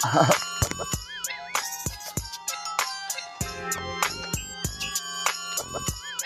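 A melodic phone ringtone chimes, a bright run of synthetic electronic notes repeating steadily at moderate volume, with no one speaking over it.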